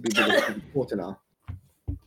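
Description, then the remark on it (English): A person talks, then falls quiet before two short, muffled sneezes burst out, a brief pause between them. “Bless you.”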